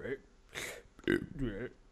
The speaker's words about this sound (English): Excuse me, wait. I need to burp.